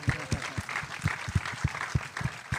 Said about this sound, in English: yes, we can give her a round of applause.